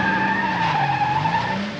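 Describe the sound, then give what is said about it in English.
Car tires skid with a loud, sustained screech, a steady tonal squeal holding for nearly two seconds before easing slightly at the end as the car slows to a stop. “There's two of them in that car. Yeah, they're stopping.”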